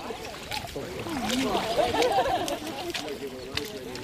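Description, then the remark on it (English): About half a dozen people in wetsuits or waders wade out into cold seawater to gather mussels. Water sloshes and splashes steadily, with indistinct voices chattering over the continuous wash of the sea. “About half a dozen brave people are wading out into the water.”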